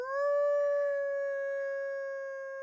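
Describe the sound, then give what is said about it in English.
A woman biologist cups her hands around her mouth on a cold Wisconsin night and imitates a wolf, letting out one long, steady howl that rises slightly at the start and holds a sustained tone before fading. Fairly loud, with no other sounds. “She raises her face, cups her hands around her mouth, and howls.”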